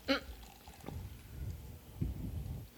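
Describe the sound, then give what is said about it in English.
A short bright fizz at the start gives way to a steady gurgle of flavored malt liquor being poured from a can, with a couple of soft sloshing bumps along the way. “That's because you can't pour.”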